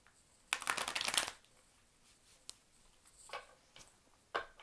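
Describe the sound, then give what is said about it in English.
A deck of cards is riffled in a quick, dense burst of crisp fluttering, followed by a few softer taps and shuffles. Fairly quiet, with no talking. “I'm just going to shuffle a little more.”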